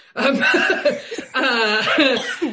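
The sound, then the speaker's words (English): Two loud bursts of coughing, each lasting about a second with a short pause between them, heard alone with no talking over them. “No, there's coughing for, enjoy.”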